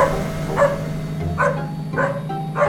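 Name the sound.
small dog barking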